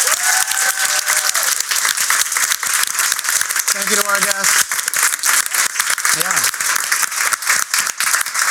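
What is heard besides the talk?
audience round of applause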